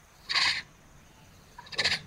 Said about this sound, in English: Let's see if the guests can hear a chuffing sound of a tiger.